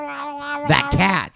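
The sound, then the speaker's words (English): A human voice imitates the cry of a tauntaun from Star Wars: a steady, nasal whine breaks into loud, warbling yowls that rise and fall, ending with a short sharp yelp. “I was thinking of a tauntaun.”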